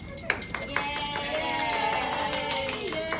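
A hand bell rings rapidly and repeatedly, its bright metallic strikes overlapping into a sustained shimmering clang, fairly close and loud, with faint voices in the background.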